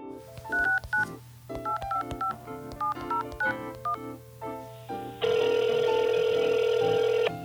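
Touch-tone phone dialing: a quick run of about a dozen short, bright beeps in an uneven rhythm, followed by a steady, loud electronic ringing tone that continues to the end. No one speaks.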